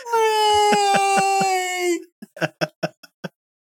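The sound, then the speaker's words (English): A cat lets out a long, drawn-out yowl lasting about two seconds, high and strongly tonal, then a quick string of seven short, choppy bursts follows before silence. “The whole cat, the cat's back. Ow! Jeez, I did not realize y'all could hear her.”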